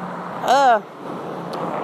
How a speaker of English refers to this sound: Fuck traffic in the background.